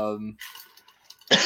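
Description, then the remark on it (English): A brief voiced sound gives way to quiet, then a sudden harsh cough bursts out near the end, loud and rough. “I'm sorry. Can you repeat that? I was coughing.”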